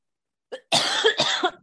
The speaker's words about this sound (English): Goodness. I haven't coughed for a week. And all of a sudden right now. Now it's happening.